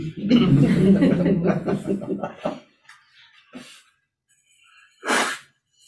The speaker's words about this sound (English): I always sneeze like 15 times too.